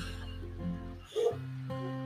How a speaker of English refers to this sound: Forgive the dogs in the background.